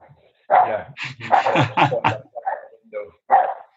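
A dog barks loudly in a rapid run of several sharp barks, followed by a few shorter, more spaced-out yaps before falling quiet.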